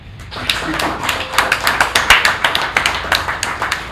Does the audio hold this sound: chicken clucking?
no